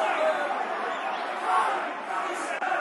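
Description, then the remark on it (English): A football crowd at a match involving Burton chants abuse, "dirty northern bastards", a loud, sustained mass of many voices merging into a steady roar with a brief swell partway through. “Dirty northern bastards in the crowd.”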